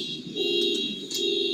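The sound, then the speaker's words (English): A car's electronic alarm or lock signal: a steady electronic tone hums throughout, with a low drone and a thin high whine, broken by a few brief chirping bursts. “That might be somebody's car announcing, "Check me out."”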